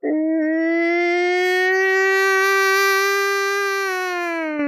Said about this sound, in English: Sirens start going off. If you've never heard a tornado siren, pretty eerie. Very much like the movies. You ever seen the movie Twister? You know?